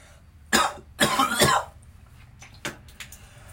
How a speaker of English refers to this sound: Guys, I'm so sorry you have to hear that cough. That's so loud.